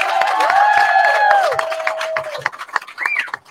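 Loud audience applause for the evening's hosts, dense overlapping claps mixed with shrill whistles and cheering voices, thinning out into scattered claps near the end.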